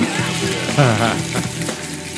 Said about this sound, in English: What's going on? Sizzle. Sizzle.